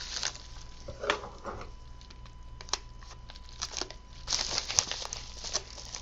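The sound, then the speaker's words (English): Hard-to-open plastic packaging crinkles and crackles as it is pried open, in irregular bursts of rustling with a few sharper snaps, steady handling noise throughout and no voices. “Man, some of this stuff is so hard to open.”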